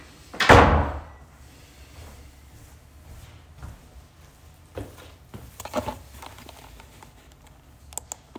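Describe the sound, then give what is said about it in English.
A door swings shut with a loud thud near the start, followed by soft scattered clicks, shuffles and light knocks. “Guys, can you shut the door here?”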